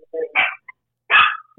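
A small, nervous female dog lets out two sharp barks, with a brief pause between them and quiet in the gaps.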